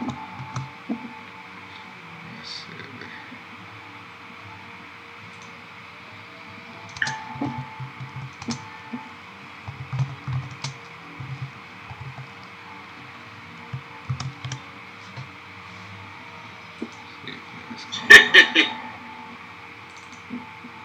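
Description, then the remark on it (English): Quiet, irregular keyboard typing of a message: scattered soft clicks and taps over a steady electronic hum, with a brief louder clatter near the end and faint muffled background sounds. “But, let me just message these niggas real quick.”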